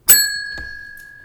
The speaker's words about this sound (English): So the speed round, you get to hear my bell.